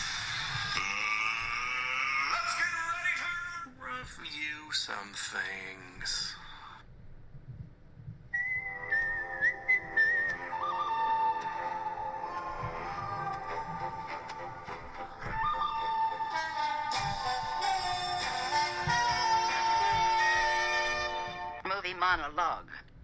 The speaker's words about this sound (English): What that now does is takes us to the part of the program where I push a button that starts a series of five-minute timers like this.